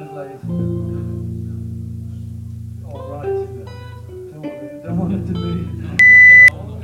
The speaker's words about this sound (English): All right, you know, we don't want it to be all, and then the sync beep obscures it.